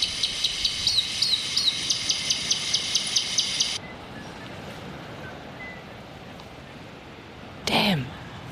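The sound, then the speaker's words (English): A recording of a robin's call is played near a trap baited with mealworms: a rapid, even series of high, thin chirps for a few seconds, then it cuts off abruptly, leaving quiet outdoor ambience and a brief rustling burst near the end. “So you're just going to play the call again?”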